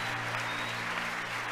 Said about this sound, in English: You can hear the applause behind